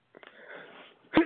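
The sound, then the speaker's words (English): A single sneeze: a drawn-out, breathy intake of air builds for most of a second, then breaks into one sharp, loud burst. No talking. “excuse me. Bless you.”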